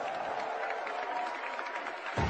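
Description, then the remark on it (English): A crowd at the in-person .NEXT event, the first held in person since 2019, applauds steadily, a dense wash of many hands clapping at an even, sustained level with no voices standing out. “Please join me again in a big round of applause for everyone here at .NEXT.”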